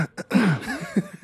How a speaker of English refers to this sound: Clearing my throat, sorry.